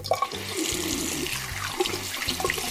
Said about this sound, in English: I think that's he's washing his hands. That's a good thing. Really? Oh, yeah. Sounds like he was evacuating something.